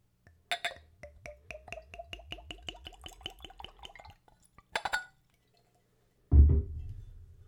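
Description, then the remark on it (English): Liquor glugs from a bottle into a clean Glencairn glass, poured neat at room temperature, in a quick run of rhythmic gurgles that rise in pitch as it fills, then a sharp glassy clink and a dull thud. “For every liquor or liqueur that I try on this show, I use a clean Glencairn glass, and I try them neat.”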